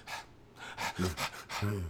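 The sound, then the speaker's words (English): A person pants heavily and rapidly, about six breathy gasps in quick rhythm, a couple of them voiced, imitating being out of breath after a roughly 10-minute run to catch a plane. “You had some little breathing.”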